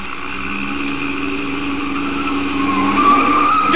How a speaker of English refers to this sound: Be careful. You turn that corner on two wheels.